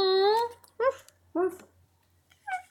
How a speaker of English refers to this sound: His hand passed tenderly over the puppy, a soft, hairy ball of living warmth cradled in his arm, and from out of the darkness at his feet came a feeble bark.